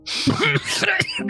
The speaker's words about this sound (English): He coughs up a good bit of blood again. Wipes it off. Throws it on the ground.